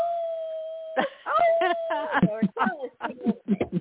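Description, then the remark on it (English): Dogs give a long, steady howl that holds one high note, then people start talking over it while the howling trails on faintly before fading beneath their voices. “So your hellhounds are gonna sing with me. I heard them all.”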